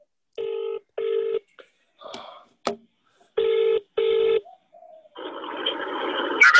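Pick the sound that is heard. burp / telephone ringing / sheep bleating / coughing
telephone ringing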